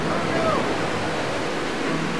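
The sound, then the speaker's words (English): A continuous, dense roar of turbulent sea water churning and surging in fog brought by a north wind, steady and fairly loud throughout, with a faint whistling tone briefly rising above the wash. “A north wind had brought a disorienting fog and a turbulent sea.”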